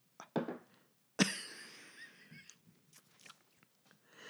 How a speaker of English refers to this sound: Ew, you can't be coughing and stuff.